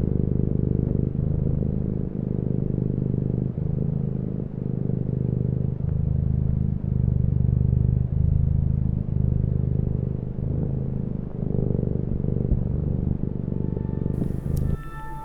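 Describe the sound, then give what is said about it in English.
A cat, Mr. Furnace, purrs steadily and loudly right up against the microphone, a deep continuous rumble that swells and dips with each breath in a slow, even rhythm, with no talking. “I guess here's some more ASMR bullshit. This is my cat, Mr.”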